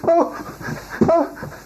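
A dog whimpers in two short, high whining bursts about a second apart, with rough breathy panting between them, moderately loud.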